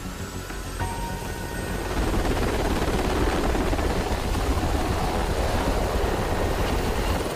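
Helicopter rotors thump steadily in a dense, continuous roar that grows louder after the first couple of seconds: one Harpy helicopter and two Black Hawk helicopters flying to intelligence-given coordinates in a special forces operation to capture a cartel leader. No voices are heard.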